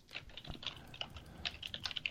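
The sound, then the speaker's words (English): Quick, irregular clicking of keys on computer keyboards as people type 'Donald Trump new presidential seal', fairly quiet, with bursts of taps spread across a couple of seconds and no talking. “Donald Trump, now we're all typing it.”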